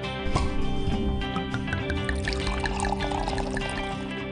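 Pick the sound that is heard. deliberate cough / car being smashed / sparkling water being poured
sparkling water being poured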